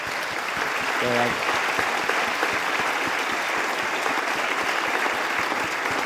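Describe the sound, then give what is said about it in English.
An audience claps steadily for the panel of a panel discussion, a dense wash of many hands with fast irregular slaps that holds at a constant loudness throughout, with a brief voice or cheer audible early on. “And can you give them a round of applause?”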